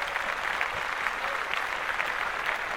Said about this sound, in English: Clap that shit up.